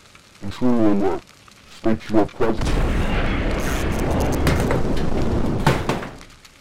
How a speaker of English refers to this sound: I'm just kind of like sitting there with my arm through it watching, and it just starts to like, you know, twitch and starts, you know, sparks start coming everywhere, and it just blows up.